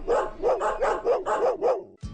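A dog barks rapidly about seven times in a steady, even rhythm, each bark loud and mid-pitched, with no one talking over it.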